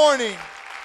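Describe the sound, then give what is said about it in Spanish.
A short burst of audience applause for God at a morning church service, opening with a loud voice gliding downward before dissolving into a soft, steady wash of clapping that fades within a second. “Fuerte ese aplauso para Dios en esta mañana.”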